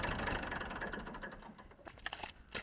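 The engine of an old, classic red Massey Ferguson 35 tractor idles on an organic farm in County Kildare with a steady chugging pulse, then the running sound thins out into scattered clanks and rattles as it is turned off. No one speaks.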